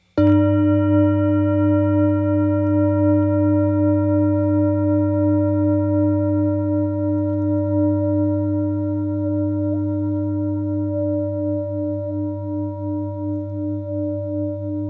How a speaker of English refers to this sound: And then the singing bowl. Mm-hmm. I'll play it like there's different ways of playing it, but I'll play it to begin with like a gong.